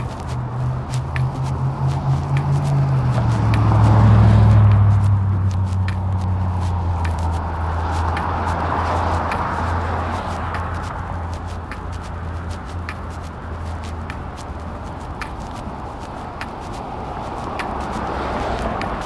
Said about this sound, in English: and see you trying to walk on a sideway, and that car purposely just went and splashed all that water.